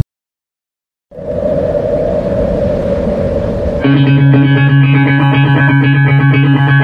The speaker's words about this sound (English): So we're going to play another song. This is one of my choices. It's a local band. Probably some of you have probably heard them, and we'll talk about them when we're done.